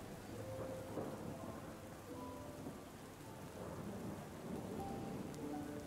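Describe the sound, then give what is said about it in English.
Steady, dense rainfall hisses throughout, with deep rolling rumbles of thunder swelling underneath. No voices are present. “Your mind wanders off within the sound of the rain, into quietness, knowing that the day is almost over.”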